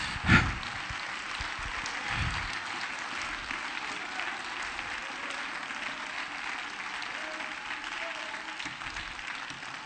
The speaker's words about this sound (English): Come on, I think we ought to clap our hands. Let's love him.